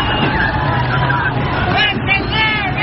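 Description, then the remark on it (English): A dense crowd of about 1,000 people rushing the San Ysidro border crossing in California, next to San Diego, roars in continuous overlapping shouts and yells while throwing rocks, loud and unbroken, with rising voice swells and a low rumble of traffic underneath. “People yelling, chucking rocks, etc., etc.”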